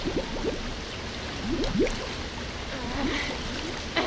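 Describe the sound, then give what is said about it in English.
Water pours steadily into a container with a continuous rushing hiss and scattered bubbly gurgles rising through it, unbroken by any voices. “Okay, we're almost full. Just a little more water.”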